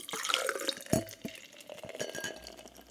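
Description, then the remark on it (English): A foamy drink is poured quickly from a very full can, turned completely upside down, into a glass: a steady fizzing hiss with gurgling splashes and a brief clink, no voices. “Just complete upside down pour.”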